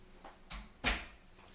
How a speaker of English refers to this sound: Someone's knocking at the door. Someone's ringing the bell.